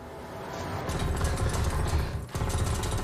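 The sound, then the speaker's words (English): Rapid, sustained automatic gunfire from someone shooting at the speakers rattles on in a dense, continuous burst of sharp cracks, pausing briefly near the end before resuming just as loud. “Yes, he's shooting at us.”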